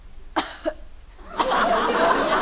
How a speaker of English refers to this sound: if you start that phony coughing again...